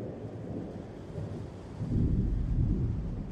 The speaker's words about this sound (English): However, there was a huge thunder sound which shocked me awake and scared me.